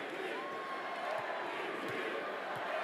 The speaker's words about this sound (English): 106-105, Jokic goes to the line. Nobody has been better in the clutch than Nikola Jokic over the last three seasons, two of which he won the MVP. Crowd chanting MVP.